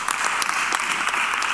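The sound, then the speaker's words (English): An audience claps for God together in a dense, steady burst of applause, many hands striking at once with no single voice standing out above the sustained clatter. “Come on, give God a clap of.”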